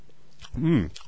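Crunching as someone chews a mouthful of crisp cereal, with a couple of sharp bites and a short hummed vocal sound in the middle.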